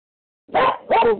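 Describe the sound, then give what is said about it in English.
A dog lets out two quick, loud barks one right after the other while its owner is on vacation with the dogs, with no voices around them. “I'm sorry, I'm on vacation with my dogs. I'm going to bark here.”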